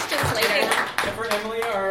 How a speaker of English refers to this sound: Yes, for let's give a round of applause for our big thank you, everyone. I'm sorry we had no questions. Come ask us.